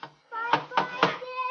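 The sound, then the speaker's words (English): Three evenly spaced knocks from a father rap firmly on a door, over a steady tonal voice-like sound that carries on beneath and after them. “Sandy, come down here by the door. Right here, Sandy. Where Daddy's knocking.”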